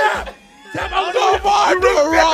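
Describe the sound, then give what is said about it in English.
Several voices of a live audience shout and holler together in loud, overlapping bursts, a lively crowd yelling with a brief lull before the noise surges back. “The audience said, calm down.”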